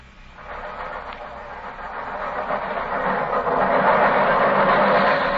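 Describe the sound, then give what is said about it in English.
An underground train passes right past a window, almost level with it: a broad rattling rumble that swells steadily louder over several seconds, with a low rhythmic clatter beneath a continuous metallic hiss. No one speaks. “Holmes, the underground runs right past here, almost on the level of these windows.”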